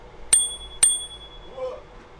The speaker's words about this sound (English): I have a little bell that I have.